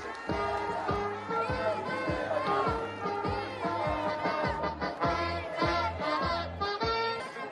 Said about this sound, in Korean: 우리 더불어민주당 이재명 대표님이 오셨는데요. 이재명 대표님 모시고 발언 듣도록 하겠습니다. 큰 박수로 모셔주십시오.